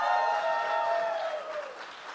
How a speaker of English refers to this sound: And, of course, Chris Jericho. Let's give him applause.